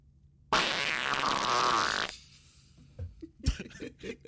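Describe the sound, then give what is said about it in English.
A loud, drawn-out fart rips for about a second and a half, buzzy and fluttering, then cuts off abruptly, followed by some faint, scattered voices and a short thump. “I came here to fuck around and fart.”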